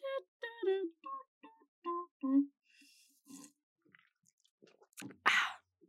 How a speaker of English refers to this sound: I'm going to take a quick sip. So hold on 1 second.